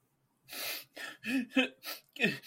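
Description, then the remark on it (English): A voice imitates a man sniffing and blubbering as he walks over to a door: a run of six or so wet, breathy sniffs and sobs in an uneven rhythm, moderately loud and getting louder, with no other speech. “Just a lot of sniffing and blubbering getting louder as he walks over to the door and opens the door”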